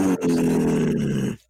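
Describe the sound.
A person imitates an angry cow with a loud, low, sustained moo-like bellow, strained and growly, starting with a brief grunt, then one long drawn-out call that cuts off abruptly.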